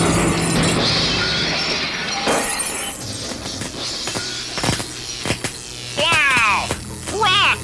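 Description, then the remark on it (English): A loud, rumbling explosion throwing sparks and lights up by a plane, with a burst of shattering, crashing debris and several sharp cracks, followed near the end by short rising and falling squealing tones. “You see that explosion, all those sparks and pretty lights that flew up here by the plane?”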